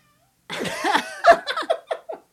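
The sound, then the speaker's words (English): A cat lets out a loud, drawn-out yowl, then a quick string of four or five shorter meows, each rising and falling in pitch. No one speaks. “Hello, kitty. That was loud.”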